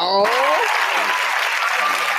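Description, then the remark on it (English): A brief voice is cut off as a loud burst of crowd applause breaks out, dense steady clapping that fills the remaining couple of seconds. “We give him that applause, man.”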